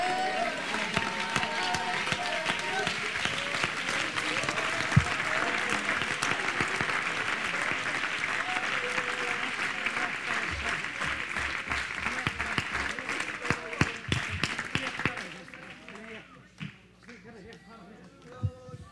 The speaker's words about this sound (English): Turn to your seats, clapping your hands.